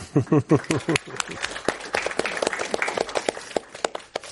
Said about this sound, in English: And let's have a big thank you and applause for our speakers